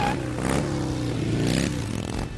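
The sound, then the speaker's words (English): A motorcycle engine revs up loud, its throttle surging twice in quick bursts over a steady rumbling idle, with a rough, clattering mechanical edge. “There is something about motorcycles.”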